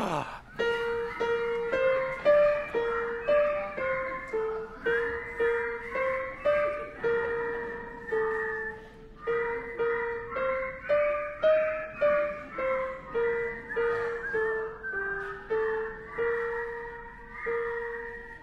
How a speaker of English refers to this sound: Now, this is where the audience participation... for this tune, I think it's probably best to whistle, and you'll understand why. It sounds like this.